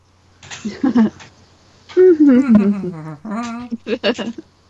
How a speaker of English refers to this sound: Whales humming.